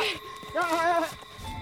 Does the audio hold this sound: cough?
no